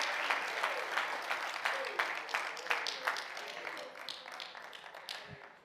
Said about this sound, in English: Let's clap our hands and praise Him tonight. Hallelujah.